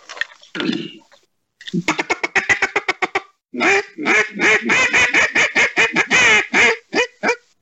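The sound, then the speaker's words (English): A mallard duck call blown by a hunter of Primos Hunting, starting with a few low notes, then a fast rhythmic run of sharp quacks that builds into a long, loud, evenly paced series before tapering off. “Hey, before we kind of close the chapter on the TV show, …, grab one of your duck calls and give us a mallard real quick.”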